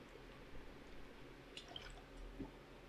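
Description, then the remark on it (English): A speaker takes a faint sip of water during a talk: a few soft wet clicks and a small gulp amid quiet, with no talking. “And give me a second, I need some water.”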